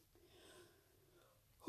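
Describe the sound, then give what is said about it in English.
A single quiet, drawn-out yawn, breathy with a faint low voiced groan running through it, heard alone, ending with a brief sharp click. “Another yawn.”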